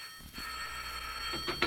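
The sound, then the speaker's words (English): A telephone by a woman's bed rings with a continuous, shrill metallic trill that stays steady for the whole moment, with a couple of brief rattling bursts near the end and no one speaking. “Because it wasn't more than half an hour after she had shot me that the phone by her bed rang and she answered it in person.”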